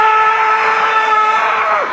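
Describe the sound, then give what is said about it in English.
A loud, sustained, piercing scream held steadily for about two seconds, with the pitch sliding downward right at the end. “How about a moment of screaming?”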